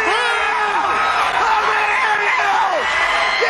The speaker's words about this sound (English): Tackett, a Triple Crown winner! Yeah! Is that you screaming in the back?